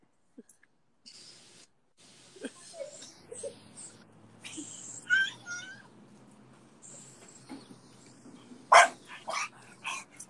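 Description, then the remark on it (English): A dog tied up on the stairs in a house barks in scattered, irregular bursts at close range, right in a man's face, with softer yelps and whines between them and one especially loud, sharp bark near the end. “Look at this dog. He's barking at me in my face.”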